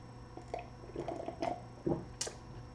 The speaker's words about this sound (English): I don't know if you guys can hear that on my podcast family, but I know my YouTube family just saw me take a sip of that cup, and that's a visual representation of me actually drinking the Kool-Aid.